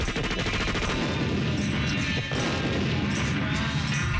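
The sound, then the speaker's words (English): A loud explosion sound effect played up and down the street to make macaque monkeys run away: a dense, sustained roar of blasts and crashing bursts with rapid crackling pops like gunfire, briefly dipping about halfway before surging back. “Maybe by explosion, we'll, my sound effect will make them run away.”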